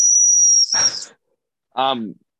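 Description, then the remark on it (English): A small safety whistle that comes with a running bag gives one loud, piercing, steady high-pitched blast lasting under a second, cut off by a breathy rush, then a brief vocal sound after a short pause. “See, this running bag comes with a whistle that my boss and I have lovingly dubbed the rape whistle, and it sounds exactly like this.”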